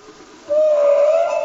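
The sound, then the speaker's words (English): A humpback whale song note: after a brief stretch of soft hiss, one loud, sustained tonal moan swells in and holds, creeping slightly upward in pitch to the end. No one speaks. “From the ever-evolving song of humpback whales”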